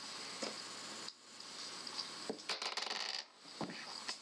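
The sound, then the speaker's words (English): Dice are rolled and clatter across a hard tabletop in a quick burst of rattling clicks, with a few isolated taps before and after, fairly quiet with no talking. “One of those was good dice. The other one was not good dice.”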